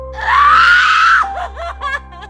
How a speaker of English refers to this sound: Still holding his hand, she covered her face and screamed at the top of her lungs.